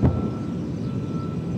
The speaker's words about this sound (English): NPR's … brings us this report, which does start off with some sounds of explosions. Just a few miles from this pastoral dairy farm, Israeli warplanes pound targets in southern Gaza.